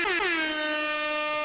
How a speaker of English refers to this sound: Let's do an air horn for Bob.